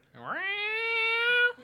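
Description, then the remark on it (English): A single loud, drawn-out meow from a male cat named Tucker that rises sharply in pitch, holds steady for over a second, then cuts off abruptly, with no talking. “Every time I go to the kitchen, he's in there fucking yelling at me.”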